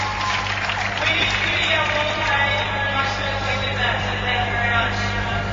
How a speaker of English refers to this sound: The supporters being given the cheer, and there's a big lot of Darebin supporters that have come here today. In big number.